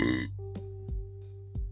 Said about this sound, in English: Excuse me. When I tell y'all, them water burps be feeling so good. I was a water burp.